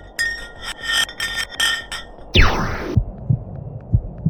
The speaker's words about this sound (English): It felt like being on a spaceship traveling through a bunch of obstacles with many rocks smashing into each other. The pitches changed over the quick descent of the block of ice, ranging from high pitch and ending with a low heartbeat-like sound.